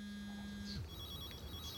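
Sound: mobile phone ringing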